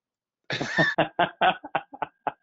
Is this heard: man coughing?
yes